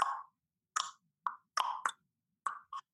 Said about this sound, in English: To determine where the tongue should be, you could do the pop sound.